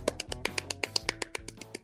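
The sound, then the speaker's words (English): Soft golf clapping: a light, polite patter of about fourteen quiet, crisp claps in a steady, fairly quick rhythm, with no voices and a faint low hum underneath. “We have all heard the very subtle golf applause. Oh, golf claps.”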